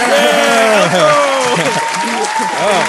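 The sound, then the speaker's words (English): A few people in a studio clap steadily and loudly for about three seconds to welcome a guest, a dense patter of hand claps, while voices cheer and call out over it. “Oh, yeah, wait, we got to clap real quick.”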